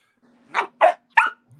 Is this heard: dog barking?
yes